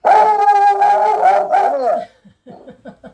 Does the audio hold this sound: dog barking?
yes